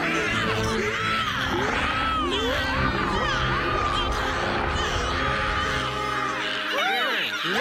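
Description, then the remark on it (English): People imitate a crowd of voices shrieking and screaming all at once, a loud, continuous overlapping din of high, rising and falling wails that lasts throughout with no break. “And then they everyone all starts start screaming.”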